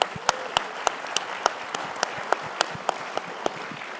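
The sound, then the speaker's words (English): An audience applauds Chief Malerba, the first Native treasurer of the United States, in a steady, dense wash of clapping. Sharp, louder individual claps stand out at a regular pace throughout, with no talking. “And so I think we all should give her an incredible round of applause for that accomplishment.”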